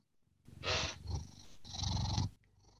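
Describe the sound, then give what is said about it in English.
A female cat purrs in two long, rumbling breaths, each rising and falling in a steady rhythm, loud and alone. “That's Tuna. I love Tuna. Purring.”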